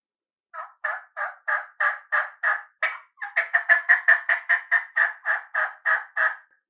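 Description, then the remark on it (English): A long run of turkey hen yelps, a cut yelp made on a mouth call, about twenty evenly spaced raspy notes, clear, with a faster, louder burst in the middle before settling back into a steady rhythm. “Yeah, and that's your typical hen call. That's your typical yelp. I mean, that was kind of a cut yelp”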